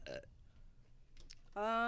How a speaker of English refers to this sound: Just one burp. Just one burp. That's definitely not one burp. Oh, no. She's definitely burp more. No, that was my first.